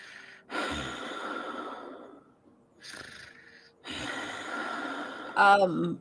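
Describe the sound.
A voice imitates the heavy, rasping breathing of a slumped, armored creature in three long, noisy breaths separated by short pauses, ending with a brief voiced snort-like grunt, fairly loud.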